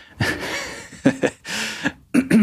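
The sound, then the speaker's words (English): A fairly loud fit of coughing: several harsh, raspy bursts in an uneven rhythm, some short and sharp, others drawn out and breathy, with no talking. “I'm gonna leave in that cough too.”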